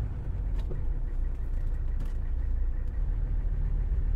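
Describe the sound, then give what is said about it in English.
Steady low rumble of road traffic on the approach to the Lincoln Tunnel extension, engines droning in a continuous heavy hum with faint brief clicks and swishes on top and no talking. “And a little bit of traffic here as we try to get on to the Lincoln Tunnel extension.”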